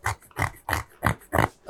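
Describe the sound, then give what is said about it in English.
A coaster being scratched: five rough, rhythmic scraping strokes, fairly loud, each about a quarter-second long with brief gaps between them, and no voices. “It's you scratching a coaster.”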